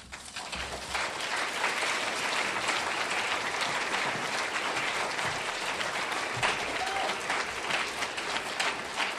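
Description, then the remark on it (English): An audience applauds author Anthony Doerr steadily, a dense wash of many hands clapping at an even, fairly loud level that holds for about nine seconds without any voices breaking through. “It's nice of you to clap.”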